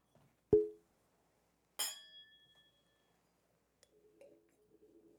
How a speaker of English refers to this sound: Here. Give me a clink that glass.